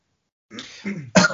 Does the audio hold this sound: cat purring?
no